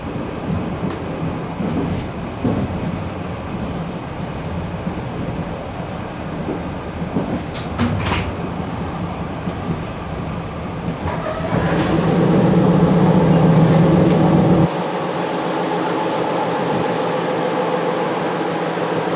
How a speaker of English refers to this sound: It's Wednesday and I'm still on the train. And it's now about just after 20 past 9. And I'm coming back from Krakow. I'm currently in Warsaw. And then one station to get home.